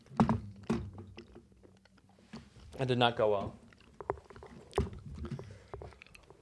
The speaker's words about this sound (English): That's nasty stuff. I'm chewing it right now. It's not bad.